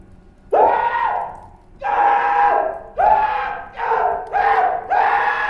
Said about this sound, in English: A succession of loud and shrill screams, bursting suddenly from the throat of the chained form, seemed to thrust me violently back.